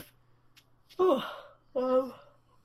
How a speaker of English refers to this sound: Podcast yawn. Raise your hand if you just yawned.